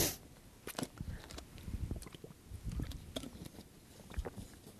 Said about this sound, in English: I'm going to have to get some water here. Excuse me.